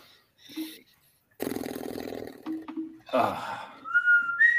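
A person whistles a game show theme tune to fill a 30-second drawing round in a game, with clear high sustained notes toward the end, after a burst of rustling, rumbling noise and a few short vocal sounds.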